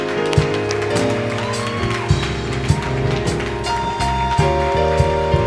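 A crowd gives a standing ovation as a clap offering to the Lord, with steady clapping and scattered sharp claps rising over sustained keyboard chords and a low bass line that play throughout.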